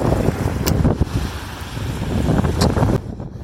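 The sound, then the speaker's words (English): Steady roar of wind buffeting the microphone over the wash of ocean surf, recorded during a walk on a beach, loud and continuous, with a few sharper gusts before it drops off abruptly at the end. “Beautiful ocean of this.”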